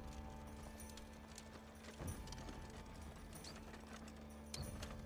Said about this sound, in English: Your horse just kind of trots off, looking back in slight concern.